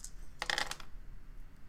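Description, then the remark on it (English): Dice clatter across a tabletop in a quick burst of bright, rattling clicks lasting under half a second, rolled for a strength melee attack with two extra dice in a tabletop role-playing game, followed by quiet room tone with no one talking. “With two extra dice, because you're hitting this guy hard.”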